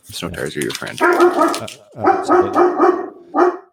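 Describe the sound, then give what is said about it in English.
A dog barks in a run of loud, drawn-out, tonal yelps, pausing briefly partway through before a final short bark. “This is a dog friendly podcast, for the record.”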